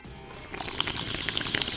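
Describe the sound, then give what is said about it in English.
A fizzy, aerated raspberry drink pours steadily while a dense fizz of tiny popping bubbles crackles on top, fairly quiet, with no voices. “Ooh, that's aerated raspberry goodness.”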